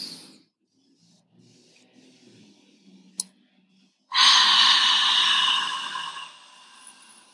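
A deep, forceful breath rushes out for about two seconds after a quiet stretch with a faint click, then tapers off, during a guided deep-breathing exercise. No one speaks.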